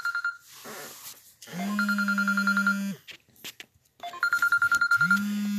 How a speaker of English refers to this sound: And I have a ringer coming in on an incoming phone, and I don't want to knock it off, because if I do, I think it's going to jack up my whole transmission right here. Okay, that's getting persistent.